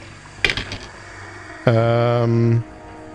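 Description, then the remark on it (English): A quick flurry of small dice clinking against each other as they are rolled during a game, a few sharp clicks, followed by a steady buzzing, voice-like tone that holds for about a second. “Fucking dice. Clink.”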